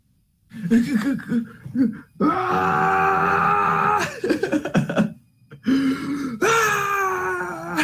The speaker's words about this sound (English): I mean, it wouldn't be an anime if he didn't scream to the heavens in the rain with his shirt off.